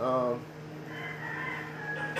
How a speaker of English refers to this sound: Rooster calling right now.